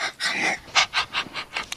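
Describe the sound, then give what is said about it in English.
A person imitates a panting dog, with quick, rhythmic, breathy huffs repeating about every quarter second. The huffs are airy and moderately loud, with no talking alongside. “You know, she kept asking me for a puppy, and I couldn't get a puppy, so I turned into the doggy.”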